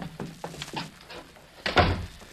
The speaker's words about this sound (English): Now, just close the door, will you, please? We'll be waiting.